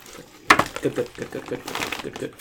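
Dice land with a sharp clack and tumble across crumpled paper in a quick rattle of clicks and rustles, with voices murmuring underneath.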